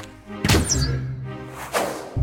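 A crossbow is fired at a cow about 160 feet away and misses, with a sharp, heavy thunk and a low resonant twang, then a softer second thud follows about a second later. No one speaks.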